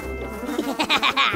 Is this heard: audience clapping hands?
no